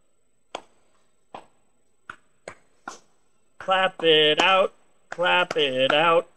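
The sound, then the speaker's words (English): Five sharp, separate hand claps spaced unevenly in near silence, followed by a loud, drawn-out voice making sustained tonal sounds with a few more claps mixed in. “Clap it out, and spin.”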